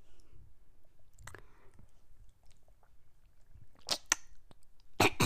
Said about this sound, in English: drinking water out of a water bottle. That's what the noise is.